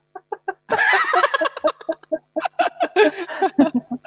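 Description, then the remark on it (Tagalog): A flock of young fowl quacking and clucking excitedly after seeing their mother, a burst of overlapping calls followed by quick repeated chirpy quacks in an uneven rhythm. “Nakita nila nanay nila, kaya kwak, kwak.”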